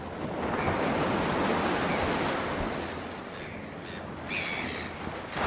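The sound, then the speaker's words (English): Steady ocean surf washes continuously at the water's edge, a broad rushing hiss of waves with gentle surges, moderately loud, with a faint bird call near the end and no voices. “Does it have small little waves? Or big crashing waves today?”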